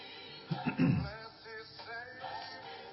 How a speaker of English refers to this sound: Still clearing my throat.